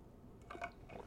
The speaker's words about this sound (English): I do apologize for having to drink so much water because my throat feels just raspy.